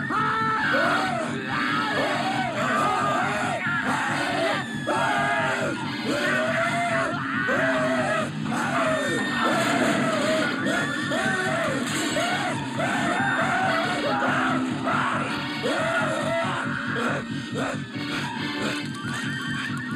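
A puppet creature screams over and over, a loud, continuous stream of wavering shrieks and yells that barely pauses for the whole stretch, with a dense, busy backdrop underneath.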